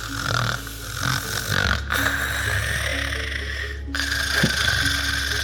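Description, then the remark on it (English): A voice imitates loud, open-mouthed snoring, as of Hypnos snoozing with his mouth wide open to the ceiling, with long rasping, rattling breaths in a couple of drawn-out cycles, fairly loud, with no other talk. “And he turns to look at Hypnos, who is just snoozing and snoring so loudly with his mouth just wide open to the ceiling, just going...”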